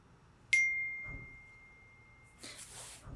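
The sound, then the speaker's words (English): A single bright phone notification ding from a support program rings out cleanly and fades slowly over about a second and a half, followed by some soft rustling noise. No one speaks. “What's that? A notification from the support program.”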